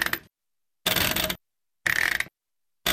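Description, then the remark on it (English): A household washing machine's settings knob is turned in short, ratcheting clicky bursts, four of them separated by brief silences, heard clear with no voices. “This is the washing machine's settings knob.”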